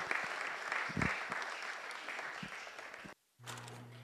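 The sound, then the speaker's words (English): A crowd applauds with dense, steady clapping for about three seconds, then it cuts off abruptly into a brief silence, followed by a low electrical hum. “Of applause.”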